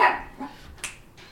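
dog barking

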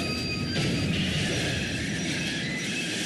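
train crash sound effect

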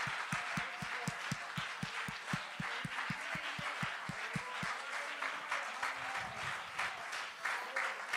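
audience clapping hands

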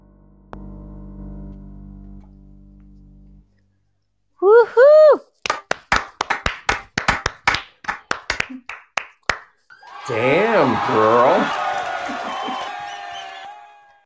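applause

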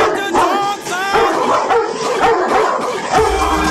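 dogs barking

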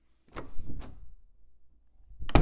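door

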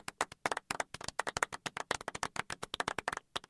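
clapping

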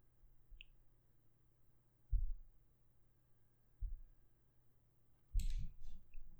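computer mouse clicking

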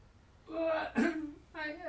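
cough

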